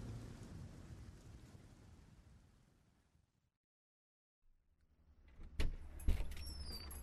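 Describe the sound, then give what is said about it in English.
Steady rain hisses and patters, gradually fading to a brief silence, then returns with a low rumble and a few sharp knocks and splashes. No one speaks. “The rain continued to fall.”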